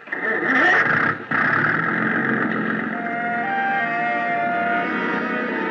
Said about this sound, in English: Big gas engine took over where the wind dropped us,